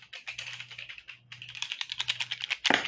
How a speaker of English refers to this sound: Oof. Who's excited to hear me shaking pencils around? This is so satisfying. Anybody who hates loud noises, I'm very sorry, I'll stop.